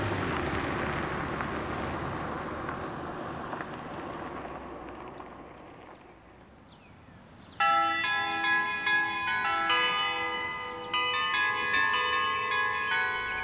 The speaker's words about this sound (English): That's an annoying doorbell.